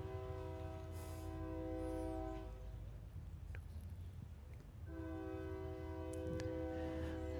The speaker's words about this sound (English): In Jesus' name, join your cart to that freight train. He's coming. Join your cart to that train.